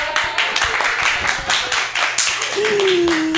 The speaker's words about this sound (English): I'm not even a millennial, and I am insisting on getting claps for that shitty, shitty joke.